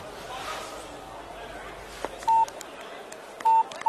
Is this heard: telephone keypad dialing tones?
yes